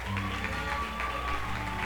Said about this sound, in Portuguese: Vamos aplaudir o senhor para essas três meninas.